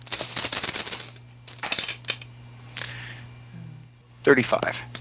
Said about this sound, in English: I'll roll my 9 dice.